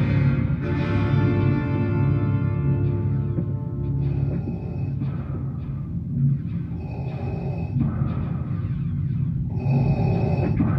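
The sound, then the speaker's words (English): Heavy mechanical respirator breathing of a film character, slow and rhythmic, with hissing inhales and exhales cycling every few seconds over a steady low rumble. Loud, with no talking. “I like his breathing though, I swear to God.”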